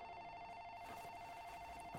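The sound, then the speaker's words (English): A desk telephone rings with a steady, buzzy electronic tone that holds unbroken for about two seconds, fairly quiet, with no voices. “The phone on my desk rang and I slid off the gurney.”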